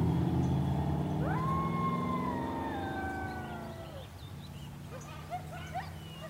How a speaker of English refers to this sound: You guys also might have just heard some coyotes in the distance. Maybe if that showed up on the recording, maybe that didn't show up on the recording.